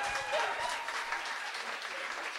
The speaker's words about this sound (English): Well-deserved round of applause there.